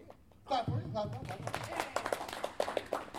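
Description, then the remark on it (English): A crowd breaks into clapping, a dense run of sharp claps that follows a burst of cheering voices, the applause carrying on steadily at moderate loudness. “Clap.”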